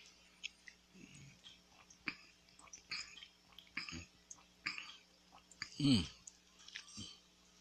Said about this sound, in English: Give me one second. I'm going to take a little sip of this tropical punch.